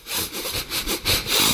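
A plastic bottle of Downy Unstoppables in-wash scent beads shaken briskly, giving a steady run of about seven bright, hissing rattles in quick rhythm, fairly loud with no voices.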